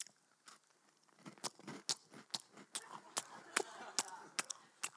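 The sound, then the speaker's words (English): Loud crunching as someone chews biscuits, with about a dozen sharp, irregular crunches over a few seconds and no talking. “It's just like, in fact, I've got some biscuits here. This is what it sounds like.”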